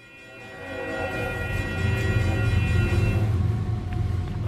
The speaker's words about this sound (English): And bells announcing the train that passes every hour outside Spinello Projects, the art space in a neighborhood known as Little River, Miami's newest art district,